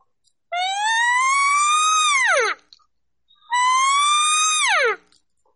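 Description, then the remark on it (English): Two drawn-out nasal calls, each rising slowly to a high, strained peak and then breaking sharply downward, made by a voice imitating a cow elk by taking a big breath and cutting a siren sound off at its top. Loud, with a short pause between them. “And basically, now if you take that siren sound, if you go all the way to the top and cut it off, you get a cow sound.”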